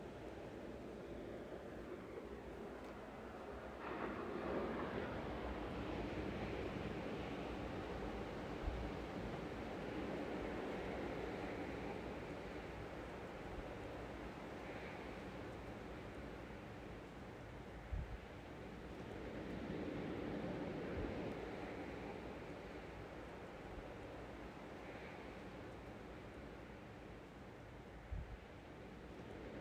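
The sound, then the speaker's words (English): Ocean waves roll in and break on the shore in a steady, continuous wash of surf, swelling louder every few seconds, with no voices present. “Waves crashing.”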